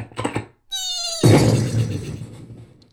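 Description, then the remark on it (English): A horse whinnies in a short, high, strained cry as it trips, immediately followed by a loud crashing thud that rumbles and fades out over a couple of seconds. No one speaks. “But just as he was catching up, his horse tripped.”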